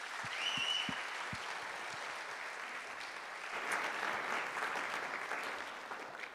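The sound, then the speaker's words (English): An audience applauds steadily, a dense wash of many hands clapping that holds at an even level for several seconds, with a brief high whistle early on and no voices. “If you want to give them a round of applause.”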